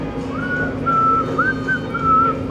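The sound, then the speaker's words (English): A person whistles the slow, eerie melody from the film Kill Bill, sustained pure notes gliding between pitches with short breaths between phrases, clear over a faint low background hum. “And it's not a Halloween song, but that song in Kill Bill that the Pussywagon guy whistles.”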